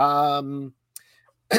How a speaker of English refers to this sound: excuse me. Try not to cough directly into the mic.